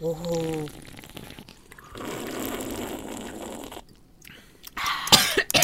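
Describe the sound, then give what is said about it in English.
A brief voiced sound opens, followed by a stretch of steady rustling noise, then a short, harsh cough-like burst erupts near the end, fairly loud. “Even when I don't cough, it makes it sound like I cough.”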